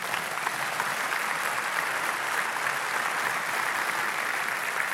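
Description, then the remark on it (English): A crowd applauds steadily for about five seconds, a dense, even wash of many hands clapping at a constant, moderately loud level with no voices on top. “You can clap. Go ahead.”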